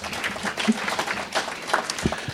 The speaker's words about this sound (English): I'd like to introduce you to Ian Birch. He's my assistant. Give Ian a round of applause.